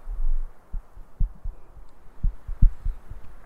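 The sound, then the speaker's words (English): A muffled, low heartbeat thumps steadily in soft paired beats, deep, with no voices over it, only a faint hiss in the background. “I try to synchronize my heartbeat with that sound.”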